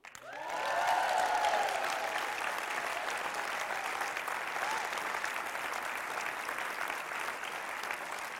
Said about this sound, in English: Just want you to know, Rotorua, Kaitaia, Whangarei, they never cheer me like that when I start, but hey, you guys are real special.